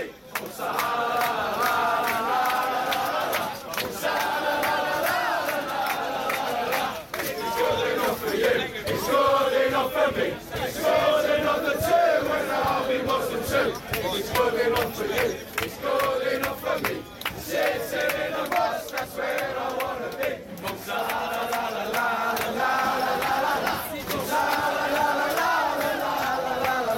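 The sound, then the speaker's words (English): A large crowd of drunk British football fans chants racist cheers about a player together loudly and continuously, a rowdy, slurred group singing with rhythmic swells, filling the whole stretch without any solo speech. “So it turns out you can't understand a bunch of drunk British guys chanting together unless you're looking at the lyrics.”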